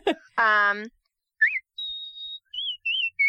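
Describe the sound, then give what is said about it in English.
A person whistles a short, bright cartoon-style melody of clear, high notes, some held and some sliding, right after a brief sung or hummed vocal tone; fairly loud. “Oh my God, that's a beautiful whistle.”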